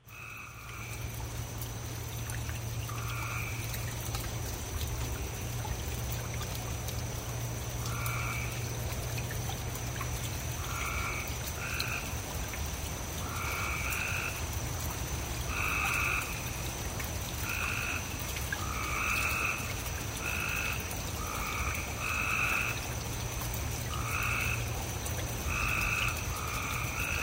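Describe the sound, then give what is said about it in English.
Gray tree frogs calling repeatedly in short, musical trills that overlap and alternate, loud, over a steady low hum and a wet, trickling background, recorded out in a driveway within city limits after a big rain. “Those are gray tree frogs.”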